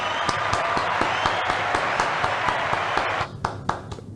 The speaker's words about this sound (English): I just have to give myself a round of applause.